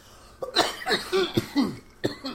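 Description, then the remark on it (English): A person coughs repeatedly, a run of four or five harsh, raspy bursts in quick succession with brief catches of breath between them and no talking. “Hold on, I got a cough.”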